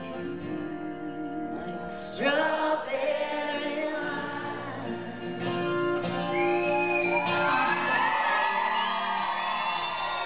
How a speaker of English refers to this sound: Listen to this crowd applause right here.